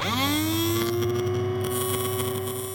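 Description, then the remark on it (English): A dentist drill spins up with a quick rise in pitch, then holds a loud, steady, high whine with a buzzing edge for a few seconds. No one speaks. “Dentist drills might make a loud sound, but they're tiny.”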